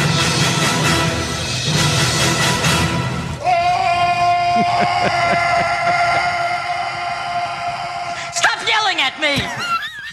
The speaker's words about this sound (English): I could listen to that fucking thing all day. Speaking of which, that the intro is, of course, Arnold Schwarzenegger in The Predator screaming.